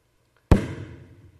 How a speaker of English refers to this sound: And out of his desperation and some ounce of trust in that moment, he went and found a house that looked like it belonged to a family of means and pounded on the door.